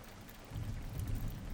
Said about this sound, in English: But she's the one getting rained on.